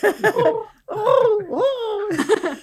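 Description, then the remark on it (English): A person imitates a pigeon, making warbling, throaty coos that swoop up and down in pitch across a few short bursts. “I can't do a pigeon impression.”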